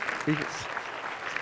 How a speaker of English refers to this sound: Who are you clapping at?